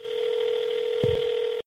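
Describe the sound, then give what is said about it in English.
A steady telephone dial tone hums continuously, broken near the end by a brief keypress blip as the caller begins redialing a village office in New York after being hung up on, then cuts off abruptly. No voices. “Okay, I think they hung up on me. I'm gonna call back.”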